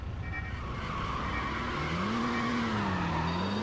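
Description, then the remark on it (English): A PlayStation video game car, the Torita, drones steadily, its engine pitch creeping slowly upward as it gathers speed, with a faint tire screech mixed into the continuous, fairly loud motor hum. No one speaks. “All right, it's a bit of a slow pickup.”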